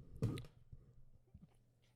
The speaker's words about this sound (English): I hit my keys. You know, whenever you say all that, I keep hitting stuff.